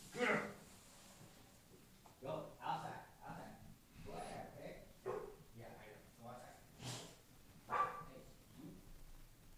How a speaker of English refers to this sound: Oh, God, my dog. How did she get down here? I don't know. She opened the door. Do you have not door handles? I do, man. I don't know. She's not just going to be barking the whole time.